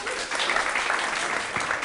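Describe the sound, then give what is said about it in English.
An audience claps steadily for singer Esther Stevens, a dense wash of many hands applauding at once, fairly loud, continuing without pause for the whole two seconds. “Would you give a round of applause for Esther Stevens?”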